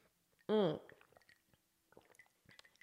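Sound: sipping ice water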